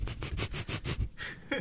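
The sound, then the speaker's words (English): A dog sniffs rapidly right up against the microphone, about half a dozen quick breathy puffs in a steady rhythm, followed by a brief scuffling rustle. “Let the dog sniff the microphone.”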